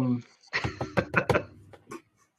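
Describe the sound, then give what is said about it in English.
A handful of light, polite claps, about six or seven sharp taps at an uneven pace, mixed in with a man's speaking voice. “Golf clap. Golf clap, y'all.”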